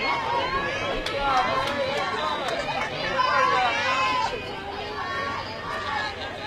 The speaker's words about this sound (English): If anyone was a strike, it was that one. Now Orangefield getting their turn to yell and erupt at the umpire.